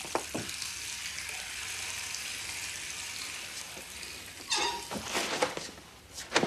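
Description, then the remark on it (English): Water runs steadily from a tap with a hissing wash as a man slowly washes his face, broken by a few louder splashes near the end as hands scoop and slap water against the face. “Why is he washing his face so slowly? You're actually supposed to like scrub and stuff.”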